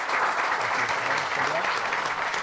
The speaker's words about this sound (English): Round of applause, I think.